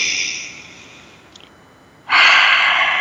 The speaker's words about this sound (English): But let's take a moment to connect. Let's take a deep breath. Breathing in through our nose, out through our mouth, really being connected, purposely breathing.